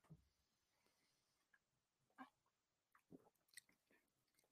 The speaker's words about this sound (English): Fizzy. It's so fizzy. Yeah. Let's take a sip.